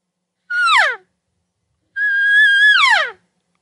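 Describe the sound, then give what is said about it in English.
Two high, nasal mews from a hunter making light elk cow calls toward an elk: a short one sliding downward, then a longer held call that breaks and drops in pitch at the end. No talking between them. “I'll probably just some light cow calls, just see how he responds.”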